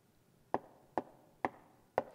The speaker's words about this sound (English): I stand knocking.